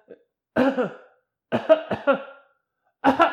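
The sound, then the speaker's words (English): A voice imitates a coughing fit: a few short, voiced, throaty bursts in clusters separated by brief pauses, fairly loud, with no actual words. “Like, she coughs. I don't think she coughed more than four times.”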